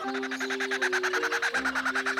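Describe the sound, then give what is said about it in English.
A kookaburra's raucous call, a fast run of rhythmic, cackling hoots repeating steadily like loud laughter, clear with no talking. “This is a kookaburra.”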